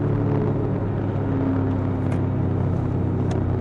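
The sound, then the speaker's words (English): Steady, loud road traffic rumble with a constant low engine drone and tire noise, moving a little faster, continuing without pause or distinct pass-bys, and no voices, on a road near Keel Street, Dufferin Street and Yorkdale Road. “The traffic is moving a little bit faster now.”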